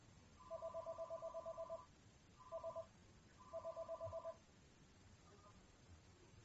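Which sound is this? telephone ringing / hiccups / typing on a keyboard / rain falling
telephone ringing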